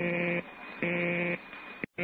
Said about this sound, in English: I went downstairs to the hall phone, dialed it, and got a busy signal.